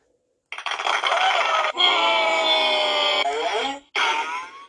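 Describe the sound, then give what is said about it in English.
A loud burst of clapping lasts about a second, then gives way to a crowd booing with a droning, moaning tone, broken by brief pauses before a final surge of boos. “The reason the clap turned into a boo is that it probably wasn't a positive thing as far as positive things go.”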